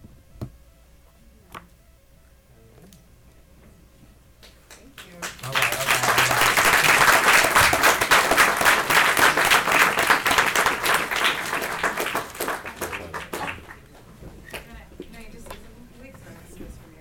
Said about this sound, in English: Sorry, just as he leaves, I just think it's one more time a round of applause for him.